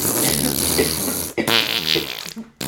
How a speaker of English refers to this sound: Pardon, I farted. In COVID times, a cough is worse than a fart. Way worse.